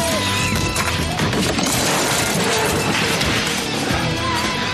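A loud, dense burst of crashing and splintering glass that continues for several seconds, with cluttered impacts and scattering debris, as a man slides on pieces of glass and goes tumbling out a window.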